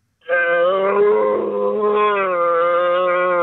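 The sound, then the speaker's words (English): A man voices a long, deep, bellowing roar in imitation of a red deer stag, one sustained guttural call held loud and steady for about three seconds, with no other talking. “The time we got people on-air to do stag "roars"”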